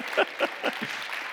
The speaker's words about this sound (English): Give her a round of applause back there.